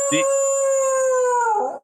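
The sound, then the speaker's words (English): A single loud dog howl held for about two seconds, steady and slightly falling in pitch, with a rough bark-like catch at the start and a ragged tail before it cuts off. “That is Chiefs dog of the day.”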